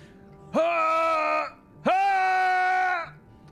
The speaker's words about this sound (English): You close the door. You just hear some screaming, like, in the bathroom.